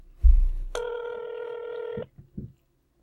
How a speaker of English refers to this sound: Nobody ever answers the fucking phone.